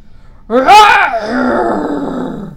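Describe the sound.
A voice imitates the roar of Aslan the lion: one loud, drawn-out bellow that swells sharply at the start, then trails into a long, rough, rumbling tail, with nothing else around it.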